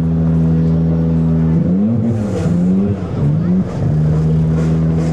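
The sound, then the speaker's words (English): A loud Formula One single-seater race car engine on the streets of downtown Phoenix, 4 June 1989, holds a steady high drone, then revs up and down through gear changes with warbling pitch sweeps before settling back to a sustained whine. “On 4th of June 1989, Formula One race cars took over downtown Phoenix.”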